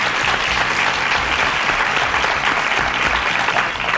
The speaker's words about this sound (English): Crowd goes wild.